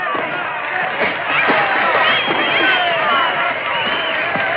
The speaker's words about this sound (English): Listen to that crowd. Do they love it? Do they ever?